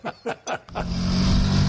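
A KTM 1290 Super Duke motorcycle engine revs in three quick, sharp blips, then settles into a loud, steady, throaty roar.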